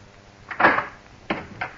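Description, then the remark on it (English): A door is opened: a scraping clunk of the latch, then two shorter knocks and rattles as it swings, with no voices. “Darling, let me in. Please open the door.”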